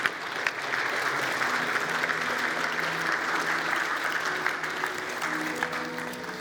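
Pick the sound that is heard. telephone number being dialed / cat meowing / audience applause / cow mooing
audience applause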